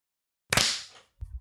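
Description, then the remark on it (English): A single loud, sharp burst of many hands clapping together at once, fading over about half a second, then a brief low thump or shuffle. “For me, the second after everyone clapped, everyone froze simultaneously.”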